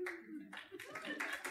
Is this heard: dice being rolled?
no